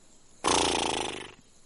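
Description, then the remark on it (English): A voice imitates a horse with one loud, roughly second-long rasping whinny-like snort that fades out, with no other sounds around it. “This is a horse.”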